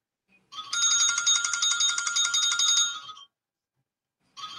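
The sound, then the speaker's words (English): A studio phone rings loudly with a bright, trilling electronic tone for almost three seconds, falls silent, then starts ringing again at the very end. No one speaks. “Sorry, ladies and gentlemen, they're calling on the studio phone. I can't mute it.”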